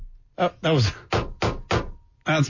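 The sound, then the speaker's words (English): A series of about five or six loud, sharp bangs on a countertop, struck in a rough uneven rhythm like a makeshift gavel, with brief voiced sounds mixed in among the hits. “Comes in here to fix the things that are broken, and you start banging things on the counter.”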